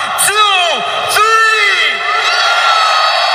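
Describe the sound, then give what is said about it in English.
A party crowd screams and cheers loudly on a count of three, with two long howling yells that swoop downward in pitch, followed by sustained shouting that stays loud throughout. “On the count of three, I would like everybody to scream so fucking loud that they can hear you.”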